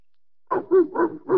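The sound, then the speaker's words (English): A dog barks four times in quick, steady succession, loud, with no one talking over it, answering its owner's call at a political meeting in a city at night. “I dare you to let me call my dog.”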